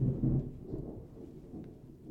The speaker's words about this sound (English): Okay, if there was a little bit of awkward pause, that was because the random thunderstorm that just went off. So it kind of caught me off guard, and I was like, what in the heck? I didn't know if somebody ran into the house.